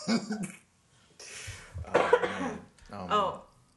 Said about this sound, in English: I want to just apologize because I think I'm getting a little sick. So if y'all hear me like clearing my throat or coughing, I promise I'm not doing it directly into the mic. It's just picking up everything.